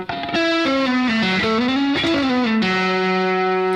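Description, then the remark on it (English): A distorted electric guitar plays a quick lick, sliding from the 5th to 7th fret on the G string, catching the B string at the 6th fret, then sliding back down, snapping between pitches through a pull-off and hammer-on, then settling into one long sustained note. “And then we're going to go up here to the third fret of the G string and then slide up from 5 to 7 on the G string, catch the B string at the 6th fret, and then slide back down, slide, pull-off, hammer-on again.”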